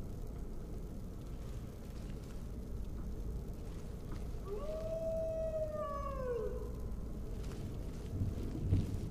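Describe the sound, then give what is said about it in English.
A single long wolf howl rises, holds a steady tone, then slides downward and fades over a constant low rumble of wind. “Wolf.”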